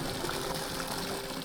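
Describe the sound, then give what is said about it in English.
A steady stream of water pours or trickles for a second and a half, a continuous splashing hiss with no pauses and no voices. “And when humans like you come along, it's an added bonus, because you tend to admire my beauty, and sometimes even give me a little extra water.”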